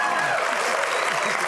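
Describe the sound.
Steady studio audience applause thanking a guest for her work, a dense, even wash of many hands clapping at a constant loudness throughout, with a faint voice briefly audible beneath the clapping.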